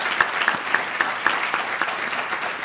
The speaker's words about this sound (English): So I want to suggest a big round of applause for all the presenters.